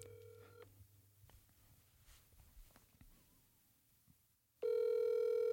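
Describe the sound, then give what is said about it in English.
An outgoing phone call being placed to a father: a short tone at the start, quiet handling noise and faint background, then a loud steady ringback tone begins near the end, clear. “Hopefully he picks up.”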